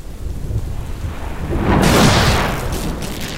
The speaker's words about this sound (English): Thunder rumbles overhead